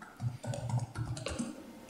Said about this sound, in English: Somebody's typing away, I can hear them.